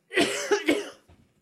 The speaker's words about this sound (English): Sorry, I was just muting myself for that cough.